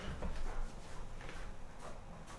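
A door is opened to let in an arriving guest, with a low thump and a few scraping, rattling clicks as it swings, and no one speaking.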